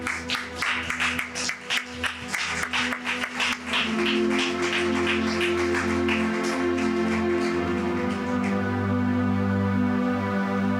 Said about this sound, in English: Would you please stand to your feet this morning with me? Let's give the Lord a mighty hand clap praise. Come on, church.